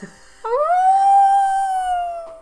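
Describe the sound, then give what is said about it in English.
A person imitates a wolf howl with a single long, rising then sustained tone, loud, drawn out for about two seconds before tapering off. “I'm going to shake off the nightdress and the cap, drop to all fours and just... sob this, I'm a wolf again, I'm off.”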